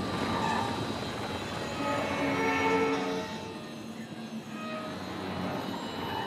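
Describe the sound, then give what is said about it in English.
Dissonant humming of a gas flare as fire escapes from it: a steady, loud roar with several clashing tones layered over a broad rushing hiss, continuous for the whole stretch and easing slightly toward the end, with no voices. “So as you get closer to the pumping stations, you hear, and then as you get closer to the flares, you hear this very sort of dissonant and sound of like a humming, like there's like a as the fire kind of escapes from the flare.”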